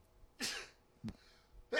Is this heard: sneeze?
yes